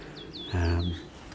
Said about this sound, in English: I think they get serenaded by chiff-chaffs, but dog's mercury, celandines.